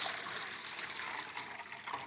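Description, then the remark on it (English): Water is poured steadily into a wash basin for washing feet, a continuous bright splashing and trickling that stays even for about two seconds, with no talking. “So he takes and he pours some water into a wash basin.”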